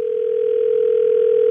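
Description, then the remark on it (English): A steady, continuous telephone dial tone hums at an even level as a call is placed to a man's wife, a single unwavering pitch with no voices or other sounds. “we will get your wife, Melissa, on the phone”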